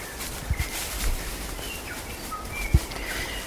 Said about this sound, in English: Sounds like the other birds that are already in the sanctuary are the welcoming committee for the 37 tikē that are about to be released here.